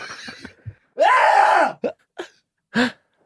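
A man coughs in a rough fit: a few raspy bursts, then a long strained, groaning hack, followed by three short, sharp coughs spaced apart.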